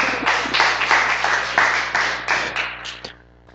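A round of applause from a group, dense overlapping claps holding steady for about three seconds before thinning to a few scattered claps and fading out.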